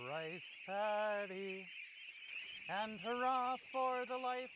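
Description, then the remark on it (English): Well-trained ducks quack on Eric Andrus's rice farm, where they forage around the rice plants to manage weeds in Aigamo duck rice farming, in short, harsh nasal bursts, a few calls at a time with brief pauses between, over a steady high-pitched hiss in the background. “He shepherds his well-trained ducks around the farm and sings to them.”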